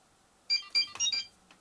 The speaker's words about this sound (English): Today, with this video, I will finally end all the talks. This one right here is Kim Possible's ringtone.